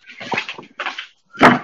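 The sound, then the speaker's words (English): Three quick squeaky-toy squeaks from a puppy chewing, the first two moderate and close together, the third sharper and louder after a short pause. “The squeaks. That's funny as fuck. That is pretty funny. Because squeaks just mean he's a happy puppy.”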